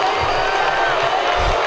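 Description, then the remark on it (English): A large crowd at the 2008 Detroit Red Wings parade booing Kwame Kilpatrick as he speaks, a loud, dense and steady roar of many voices that fills the whole short stretch with no break or single standout voice. “This was from 2008 at the Red Wings parade. Tommy Kilpatrick. Kwame's speaking, and he's being booed.”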